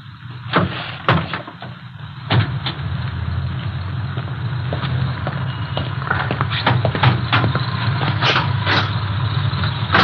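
A Cadillac's hood is released and lifted to check the engine number, with a series of sharp metallic clicks and thunks over a steady, low engine-like rumble, with no talking.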